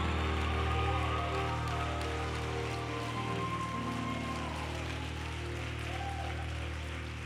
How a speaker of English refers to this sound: I think we ought to take a moment and give her a great big resounding applause tonight.